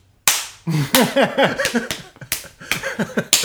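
Several loud, sharp slaps crack at irregular intervals in a fight, with short voiced yelps and shouts rising and falling between the hits.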